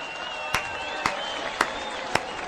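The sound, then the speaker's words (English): Scattered applause and cheering celebrating Johnny Depp winning his trial: four sharp, evenly spaced claps ring out over a steady wash of crowd noise, with thin whooping voices running underneath, all at a fairly modest level. “Let's hear it for Jack Sparrow.”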